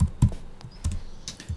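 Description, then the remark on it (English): Clatter of someone typing on a computer keyboard, a handful of sharp keystrokes tapped at an uneven pace, with no voices. “Are you typing it out?”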